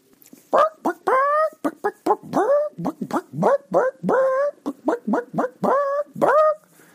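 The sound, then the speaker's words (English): A person's voice imitates a dog barking, letting out a rapid, uneven string of about fifteen loud yaps and woofs with rising pitch, with no other talking. “You were expecting me to go, hey, but I went, bark, bark, bark.”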